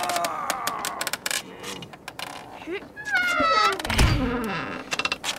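A theater's side door being pried open: sharp clicks and scraping knocks, then a long, wavering creak that rises and falls in pitch, ending with a dull low thump.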